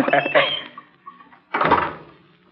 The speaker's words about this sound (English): Just closing the door.